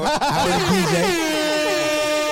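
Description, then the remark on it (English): A loud, blaring air horn blast with stacked harmonic tones sounds up close, starting with a wobbling burst and then holding steady for a couple of seconds, with faint voices mixed in underneath. “I've gotten a lot of positive feedbacks from our air horns.”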